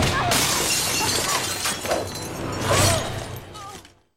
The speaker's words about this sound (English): Oh. The glass breaking.